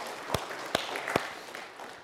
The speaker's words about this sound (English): So I want you to give yourselves a round of applause this morning for enduring this sermon series.